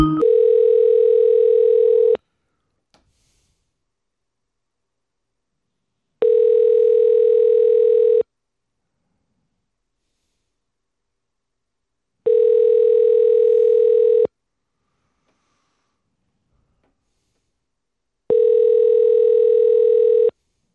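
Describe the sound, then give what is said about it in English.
Ringback tone of an outgoing phone call: four evenly spaced two-second rings separated by longer silences, steady and clear with no voices. “I'm not available to get to my phone. All right. Call me again.”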